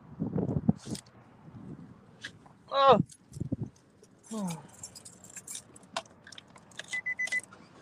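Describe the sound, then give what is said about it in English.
Keys jangle in bright metallic bursts as someone climbs back into their car, with clunks and rustling and a brief murmur of voice in between. “All right, I'm getting back in my car, y'all.”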